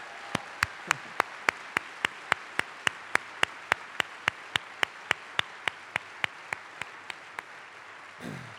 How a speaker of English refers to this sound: And we are all blessed. Paul Wellstone. Let's give a great round of applause to Paul. Woo!